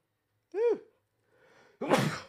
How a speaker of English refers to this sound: Oh my gosh, I gotta sneeze. I'm sorry. Maybe the allergies.